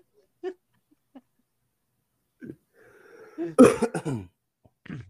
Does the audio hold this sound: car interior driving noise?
no